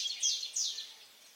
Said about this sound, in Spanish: Cualquiera que sea el motivo, el amanecer es cuando muchas aves dan el mejor espectáculo, con un canto más rápido y frecuente que en otros momentos del día.